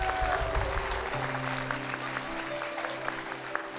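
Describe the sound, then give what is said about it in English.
An audience clapping steadily to celebrate people being baptized as they come up out of the water, a dense wash of applause with sustained musical tones humming underneath throughout. “That is why we have you clap. That is why we have you cheer.”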